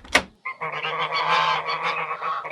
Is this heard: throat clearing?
no